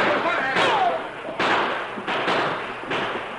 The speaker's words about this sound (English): Moving through the sagebrush, the men of the posse gradually crept closer until they were able to rush the front door. Then they burst inside.